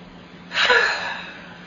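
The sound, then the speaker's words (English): A single deep, breathy inhale that swells quickly and then eases off into a softer exhale, taken while sitting on a park bench after jogging, with no talking around it. “Sit on the bench with the deep breathing.”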